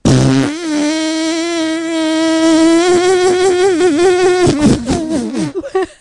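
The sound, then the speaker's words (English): Someone blows a long, loud mouth-made fart noise, a buzzy raspberry holding a steady pitch with slight wobbles for several seconds before breaking into a few short sputters. “You can go ahead and make fart noises all you want.”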